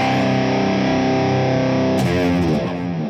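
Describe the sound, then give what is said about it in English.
A loud, heavily distorted electric guitar sustains a chord, then shifts to a new one about two seconds in, with reverb and delay tails smearing the notes together. No one speaks. “And then you add your little reverb and delay, you get a nice little palatable.”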